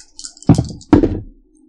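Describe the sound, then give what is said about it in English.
Dice clatter onto a table in two sharp bursts of rattling impacts about half a second apart, each tumbling briefly before settling, with faint clicking just beforehand and no voices. “So, I've got my dice out. So, let's see.”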